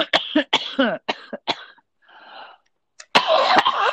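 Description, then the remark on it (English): A burst of harsh, raspy coughing, several quick barks in a row, then a short breathy pause and another rough fit of coughs after smoking cannabis. “the cough of glory.”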